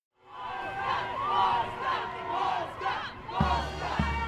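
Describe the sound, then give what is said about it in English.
A Constitution Day Parade crowd at the corner of Wacker and State in downtown Chicago, on a sunny, windy, cold day, roars with overlapping shouts and cheers in a steady, loud wash, punctuated near the end by two heavy, booming low thumps. “We are at the corner of Wacker and State, the Constitution Day Parade.”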